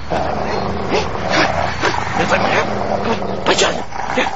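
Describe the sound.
Continuous dog-like whimpering and yipping noises with a few sharper bursts, set over a noisy background with voices.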